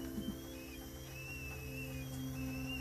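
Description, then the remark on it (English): A coffee pot brewing Nescafe gives off a thin, high whistle that wavers and comes and goes over a low, steady hum, quiet, with no one talking. “It is slowly brewing. There we go. Come on, my little whistle, Savannah.”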